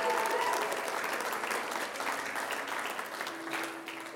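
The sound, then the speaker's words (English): A crowd claps for the praise and worship team, steadily and densely, a sustained wash of many hands applauding at fairly even loudness, fading slightly toward the end, with a faint tonal hum running underneath. “Would you give the praise and worship team a wonderful hand clap?”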